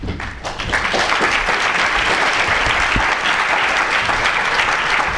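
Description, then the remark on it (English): An audience applauds steadily at a transition between speakers, a dense, even wash of many hands clapping that swells in the first half second and holds at a loud, constant level throughout. “I hope you all applaud at every transition.”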